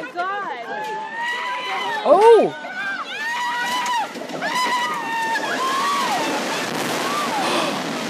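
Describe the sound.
A crowd of frightened people cry out and shout over one another as a rain-soaked street, built on a retaining wall next to train tracks, collapses and cars fall off the side of the road. Their voices rise and fall in alarm, with one loud startled exclamation early on, over a steady rushing hiss.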